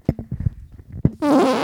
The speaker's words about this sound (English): There's been four fucking gross farts on this podcast. And all of them into the microphone, too.